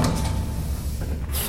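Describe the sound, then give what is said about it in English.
Doors of a fast lift slide open at floor minus 59 of an underground skyscraper, the Drash, with a steady low mechanical rumble, fairly loud, ending in a brief bright hiss; no voices. “Doors opening.”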